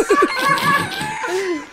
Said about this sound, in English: You're just playing chicken noises.